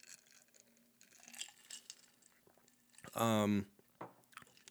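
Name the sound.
chewing ice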